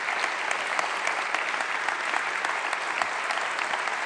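Steady applause from a sizable audience for a woman who has just shared her story, dense overlapping claps at an even, sustained level for several seconds with no voices standing out.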